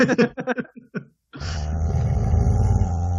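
A rapid burst of harsh, bark-like yelps from a dog barking app on a phone, quickly followed by a brief gap and then a long, low, rumbling growl that holds steady to the end.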